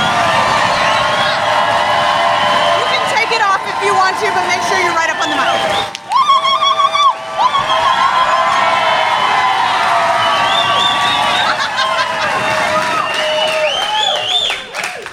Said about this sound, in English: Wow, this is the most applause I've ever gotten with this many clothes on, so.